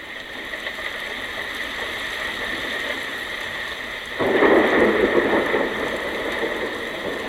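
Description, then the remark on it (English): A recording of another place plays a steady, dense patter like heavy rain hissing across a surface, with a broad noisy texture that swells louder and fuller about four seconds in, then continues evenly with no voices. “It sounds so much like rain, doesn't it?”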